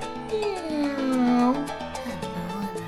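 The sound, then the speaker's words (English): A kitten named Eliza meows in a drawn-out, wavering cry that slides downward in pitch, clear, with a soft steady tonal hum in the background. “Of Not a Couple was recorded in front of a live studio audience of one kitten cat.”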